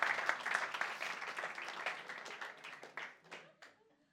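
A crowd claps for the speaker's wife, who can cook, in a dense, steady burst of applause that thins out toward the end, individual claps becoming audible as it fades.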